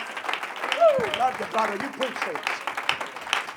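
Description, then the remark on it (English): An audience applauds, giving a hand clap to the Lord, a steady dense wash of many hands clapping for a few seconds, with scattered voices calling out and cheering over the clapping. “Why don't you give that hand clap to the Lord tonight?”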